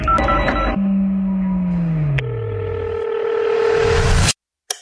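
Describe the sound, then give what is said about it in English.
A telephone line as the phone lines are opened for callers: quick dialing beeps at first, then steady electronic tones that slowly sag lower while a hissing rise builds, ending in an abrupt cutoff. No one speaks. “We're going to open up the phone lines right now.”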